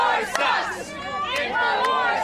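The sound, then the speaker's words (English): A crowd chants together in loud, sustained unison, many voices blending into a steady rhythmic roar with a few sharp shouts cutting through. “I got a chant going.”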